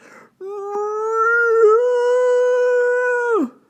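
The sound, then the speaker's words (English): A dog lets out one long, drawn-out whine, a steady high cry lasting about three seconds before it drops off sharply at the end, as it leaps away after being pierced by barbed thorns. It sounds loud, with no talking. “And he leaped away, whining to pluck out the thorns.”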